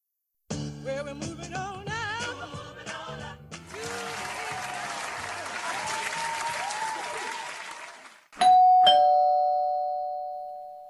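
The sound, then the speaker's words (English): After a stretch of music and then loud applause, a doorbell chimes sharply, two quick ding-dong strikes ringing out into a long, steady, fading bell tone. “Oh, don't worry about the door”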